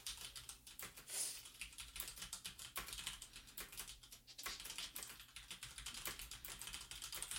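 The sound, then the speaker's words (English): Rapid, uneven clacking of keys on a mechanical computer keyboard, fairly loud, with bursts of strokes and short pauses over a low steady hum. No one speaks. “Sorry, I'm typing.”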